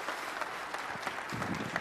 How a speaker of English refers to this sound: So let's give a rounding applause